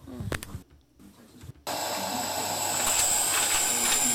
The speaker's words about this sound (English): What was that? I'm looking at owl facts. Sometimes they hiss. Oh.